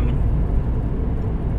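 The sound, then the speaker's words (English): Steady, continuous low rumble of road noise inside a moving car, an even engine-and-tire drone that holds constant throughout with no voices. “I guess I can bring it down, make it a downer of a car ride.”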